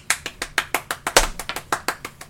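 human body sound, hand clapping

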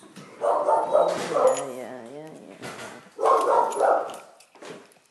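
animal, pit bull dog barking

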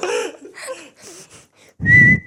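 human body sound, person whistling loudly

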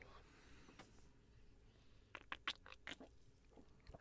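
food or drink, slurping a drink

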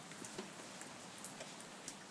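nature, rain falling

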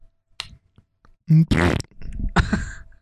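human body sound, fart

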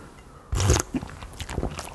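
food or drink, sipping tea

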